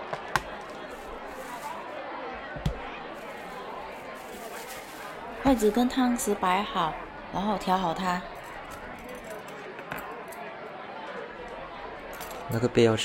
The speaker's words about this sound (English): Removing fish, rice, and fruit from a plastic bag.